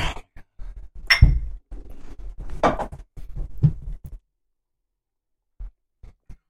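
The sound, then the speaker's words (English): Wine glasses clink together once in a toast, a brief bright ring amid shuffling and handling noises, followed by a few quiet taps near the end. “Let's do a cheers.”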